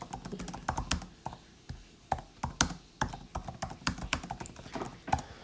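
Rapid, irregular clacking of keys on a computer keyboard, fairly loud, with bursts of quick keystrokes and short pauses, no voices.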